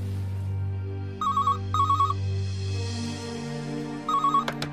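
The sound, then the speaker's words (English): A telephone rings in repeated trilling bursts, three clear rings spaced apart over a low steady hum, moderately loud, ending with a couple of sharp clicks. “is unable to answer the phone.”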